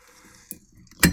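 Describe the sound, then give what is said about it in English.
Ice, including shards of a shattered whiskey ice cube, drops into a glass for a Tom Collins cocktail: a single light clink, then a loud, bright clatter of several pieces knocking together and settling. No one speaks. “So let's add some more ice because a lot of it melted.”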